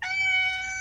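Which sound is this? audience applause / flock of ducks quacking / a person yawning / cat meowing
cat meowing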